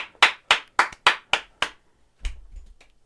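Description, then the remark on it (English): Hands clap in a quick, even rhythm, six sharp claps spaced about a quarter second apart, then a few softer, scattered claps with a low thump trailing off, a round of applause for subscribers. “I'm going to do literally a round. I'll start. You go. Round of applause to our subscribers.”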